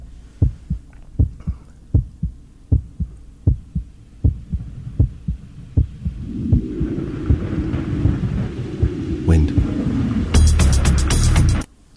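A steady, thudding heartbeat sound effect in a song intro pulses in paired beats for several seconds, then a rising low rumble builds beneath it, swelling into a loud roaring, rushing surge that cuts off abruptly.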